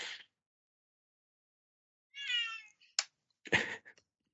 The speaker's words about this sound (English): You hear a cat coming down the corridors.